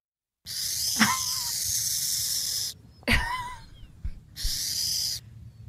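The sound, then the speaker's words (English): A burrowing owl gives harsh, rattling hisses in three long bursts, loud, with short chirpy calls between them, imitating a rattlesnake's buzz. “So, yes, a cute note on these little owls is one way they defend themselves is they like to hiss and pretend to be a rattlesnake so they won't be disturbed.”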